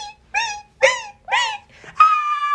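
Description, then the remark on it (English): A voice screams in imitation of shrieking horror-film violin stabs: three sharp, shrill vocal bursts in quick succession, then one long sustained high note, loud with no talking. “That was actually a scream.”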